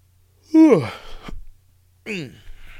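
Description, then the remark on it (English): A drawn-out yawn with a voiced, falling groan and breathy tail, followed a moment later by a second shorter yawning exhale. “Yawning over here, boys.”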